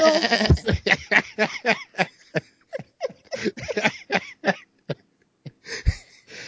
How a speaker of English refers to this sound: Even if they said, enter the goat. That should have freaked me out. Don't put no goat in here. Why are you putting a goat in here in the dark room?